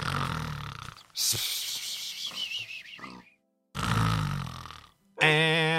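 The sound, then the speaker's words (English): A pig grunts and snorts in several loud, nasal bursts separated by short pauses, ending with a higher, wavering squeal-like oink. “Oh, okay, that was a pig.”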